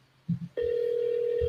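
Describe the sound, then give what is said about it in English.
After a couple of brief low murmurs, a loud, steady electronic telephone tone switches on abruptly and holds unbroken, sounding clear like a phone's ring or dial tone. “Who on the phone?”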